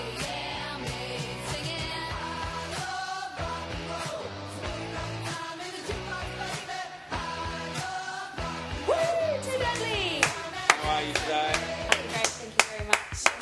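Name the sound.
audience clapping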